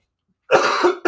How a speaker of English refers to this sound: As you can hear, I'm still dealing with a little bit of that cold. So please don't mind the cough.